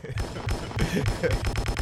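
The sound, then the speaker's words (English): A rapid gunfire sound effect: sharp, loud bursts firing in quick succession and speeding up toward the end, with heavy low thumps underneath. “You didn't tell me you wanted to put bang. That rat-a-tat ass bin after my shit.”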